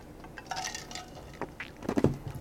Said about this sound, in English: I'm gonna take another drink here.